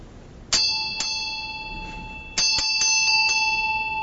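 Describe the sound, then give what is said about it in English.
A bright bell is struck twice, then after a pause rings in a quicker run of five strikes, each clear metallic tone lingering and overlapping the next. No one speaks. “Hearing pause. Yes. Such as in a bell.”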